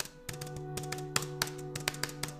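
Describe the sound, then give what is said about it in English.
Rapid keyboard typing, a string of a dozen or so sharp clacks like repeated space-bar presses, moderately quiet, uneven in rhythm, over a low steady electrical hum with no talking. “Anyway, I just hit the space bar a lot.”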